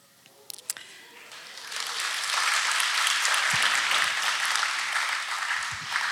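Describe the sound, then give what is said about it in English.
A church crowd breaks into applause, starting with a few scattered claps and swelling into steady, dense clapping that holds loud for several seconds. “It's better when you clap than not.”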